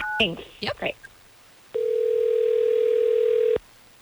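A few brief chirpy sounds, then a loud, steady telephone dial tone holds at one even pitch for nearly two seconds before cutting off abruptly, as the hosts of radio station Hot 101.5 in Tampa Bay place a phone call.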